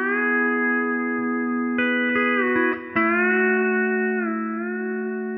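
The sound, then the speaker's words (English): A steel guitar played with a New Generation tone bar, heard through the amp signal only, rings out a sustained chord, with a few fresh picked attacks midway and a gentle slide shifting the pitch near the end. No one speaks. “Here's the New Generation.”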